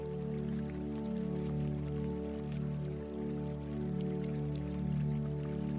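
Continuous trickling water from a water fountain with scattered drips and splashes, steady and moderately loud, layered over a sustained low musical drone that holds throughout.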